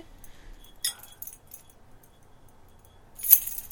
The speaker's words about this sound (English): Jingle those keys louder, baby.